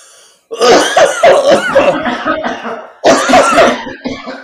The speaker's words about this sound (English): Are you mocking me or are you actually coughing?